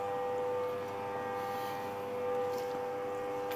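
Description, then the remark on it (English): A loud running faucet gives off a steady, continuous rush of water with a sustained high whining tone over it, holding at the same level throughout with no voices. “Now you get to hear the loud-ass faucet.”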